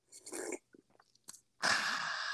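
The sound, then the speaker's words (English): A loud sip of a drink: a few short wet mouth clicks and gulps, then a long, harsh slurping draw of air and liquid that stays loud to the end. “Because I'm honestly just traumatized from that whole sip sound.”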